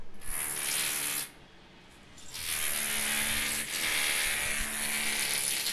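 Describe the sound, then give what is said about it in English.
Harsh, buzzing construction drilling by men working just outside a window in New York City grinds away steadily, breaks off for about a second, then resumes just as loud and continuous. No voices. “The drilling just outside my window.”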